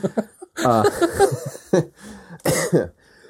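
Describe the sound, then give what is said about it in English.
A congested, phlegmy cough comes in several loud, rough bursts. It opens with a strained, voiced hacking fit and is followed by two sharper, separate coughs, with no one talking. “you hear that? Yeah, that remember how it had that congestion?”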